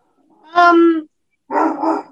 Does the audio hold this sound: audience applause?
no